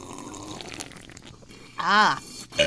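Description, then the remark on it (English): A short, loud, croaky burp erupts, lasting under half a second, after a stretch of quiet rustling background noise, followed by a brief clatter. “Did you just burp?”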